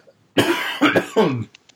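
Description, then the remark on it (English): Three harsh, raspy coughs in quick succession, fairly loud, each a broad noisy burst with a short gap between, then quiet. “sorry, I've got such a cough.”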